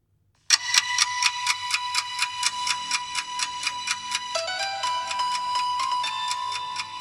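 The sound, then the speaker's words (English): A TV emergency rescue show theme tune plays alone, built on a steady, rapid clock-like ticking pulse under a sustained bright synth tone that steps down in pitch partway through. “999 Lifesavers. Yeah! I fucking love 999 Lifesavers.”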